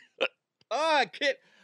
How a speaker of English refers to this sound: I better not get the hiccups. They better go away.